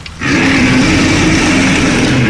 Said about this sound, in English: It was a deer skull, and what I thought were the roots of a tree were its antlers. The creature's jaw screeched in protest like rusted hinges as it slowly pried open its mouth and let out a loud roar.